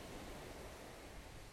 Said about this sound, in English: and I'm out here on Maui. Hopefully you guys can hear the crashing waves.